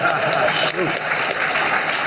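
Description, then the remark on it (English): An audience bursts into steady applause for a speech by Deion Sanders, a dense, even wash of clapping that holds at a constant loudness from start to finish, with faint voices mixed in beneath it. “He tells people to clap. They clap.”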